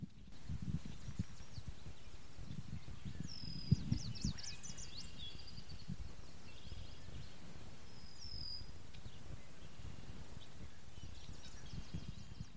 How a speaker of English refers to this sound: We're coming to you live from Point Pelee. Listen to the birds.